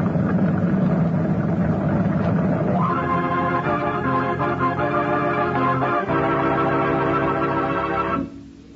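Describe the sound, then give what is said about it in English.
A motor launch engine runs steadily at sea with a loud, droning hum while approaching a ship; partway through, the motor is slowed and its pitch shifts lower into a steadier throb, then the engine sound drops off sharply near the end. “Now slow the motor.”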